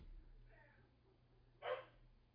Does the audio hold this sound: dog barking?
yes